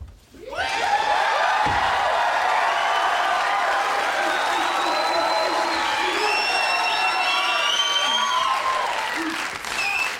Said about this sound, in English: And then into thundering applause comes Al.